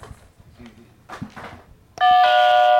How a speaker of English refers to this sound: Oh, shit, somebody's here. Like every time. That was how we used to get the dog. The dog would hide under the bed, but if we rang the doorbell, the dog would get so excited somebody was there.